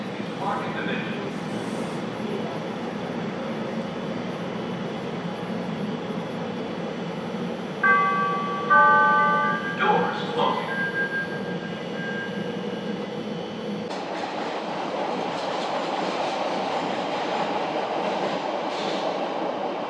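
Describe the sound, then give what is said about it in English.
A Chicago CTA rail train rolls along with a steady rumble of wheels on track, broken midway by a few bright, high metallic squeals before the low roar settles back in. “This stop is On the Train, where reporters from The Real Chi go onto the CTA and meet real Chicagoans on their daily commute.”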